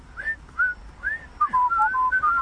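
Someone whistles a cheerful pop melody, a quick run of clear, sliding notes that gets steadier and more continuous toward the end, with no talking.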